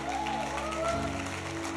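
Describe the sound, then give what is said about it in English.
A church audience claps their hands to the Lord in sustained, dense applause, steady and fairly loud for the whole stretch, with a faint sustained tone and low hum running underneath. “Clap your hands to the Lord, everybody.”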